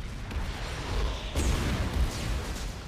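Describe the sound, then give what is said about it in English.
A dense, rumbling barrage of gunfire and explosions on a film set, with machine guns, a lot of explosives and two huge cannons filled with debris: a continuous roar of low booms and one sharper blast partway through. No one speaks. “That was a lot of explosives and these two huge cannons filled with debris.”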